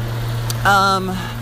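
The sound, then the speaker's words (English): A garbage truck's engine rumbles steadily on Spring Street at 11:30 at night, with a short, high whining squeal from its brakes or hydraulics rising over the low idle for a moment, heard while walking past a Trader Joe's. “Is that a garbage truck? Yeah.”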